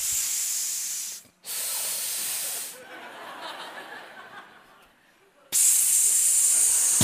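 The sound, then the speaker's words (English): A voice imitates a hospital respirator heard in a patient's room, with loud breathy hisses: a long hiss, a brief pause, another long hiss, then a softer breathy stretch before a final strong hiss. “방에 보니까 I could hear the respirator. 거기 숨 쉬는 그 기계들 있죠?”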